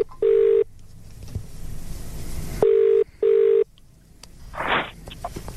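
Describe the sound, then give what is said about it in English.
A phone call being placed: a few loud, steady electronic tones beep in short bursts, separated by brief gaps, followed by a faint crackle on the line. “We have his phone number. Yeah, we've got it here. All right, chuck it in. Give him a buzz.”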